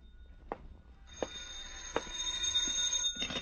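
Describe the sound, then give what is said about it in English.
A telephone rings with a steady, high-pitched electronic trill that starts about a second in and continues to the end, with a few soft knocks underneath and no voices. “The sigh that came from me, the phone ringing that came from the phone.”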